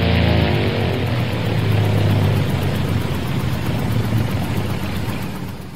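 vehicle, small airplane engine running

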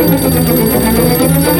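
household object, telephone ringing

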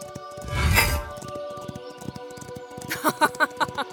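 impact, hammer striking metal

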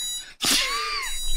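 household object, alarm clock ringing

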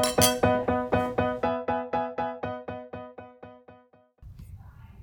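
household object, glasses clinking

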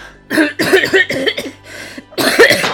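human body sound, coughing

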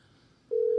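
signal or alarm, outgoing phone call ringing

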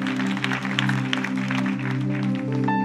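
crowd, church audience clapping

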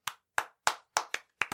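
crowd, hand clapping

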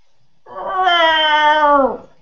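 animal, cat meowing

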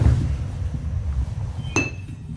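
household object, glass clinking

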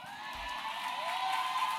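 crowd, audience clapping and cheering

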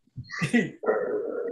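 animal, dog barking and whimpering

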